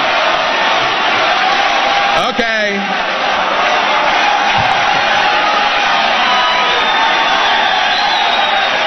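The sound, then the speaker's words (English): A large convention crowd, in C-SPAN footage, cheers and roars steadily and loudly without letup for Ron Paul before his name is even said. A brief whistle-like whoop rises near the start, and a single voice speaks a word partway through. “And the Fox thing is not even the same piece of video, and I look through the whole C-SPAN, they're still cheering.”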